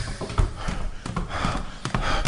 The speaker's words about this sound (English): Okay, let me get out of here. Walk down the hallway here. Down the steps.